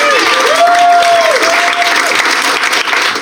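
An audience breaks into a round of applause, dense and steady clapping that holds loud for about three seconds, with a single sustained cheer or whistle-like tone riding over it partway through.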